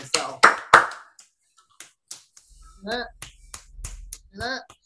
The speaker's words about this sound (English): We applaud you.